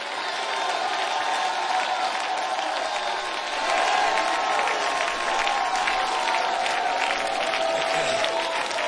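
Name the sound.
audience clapping and shouting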